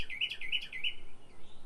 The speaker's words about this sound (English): Well, there's a bird that wanted to be on the podcast. I guess he just flew up over here.